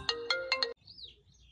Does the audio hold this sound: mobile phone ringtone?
yes